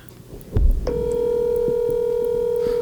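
A telephone call being placed: a soft thump as the handset is lifted, then a steady, unbroken mid-pitched dial tone that holds for about two seconds. No one speaks.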